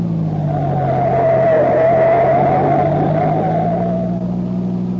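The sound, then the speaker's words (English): A green sedan, running without lights, races at high speed along a poorly surfaced, steep, graded gravel road at the edge of a precipice, its engine holding a loud, steady drone with a rising and falling whine over a rough, rushing tire noise for the whole clip, no voices. “However, the green sedan, running without lights, maintains a high level of speed.”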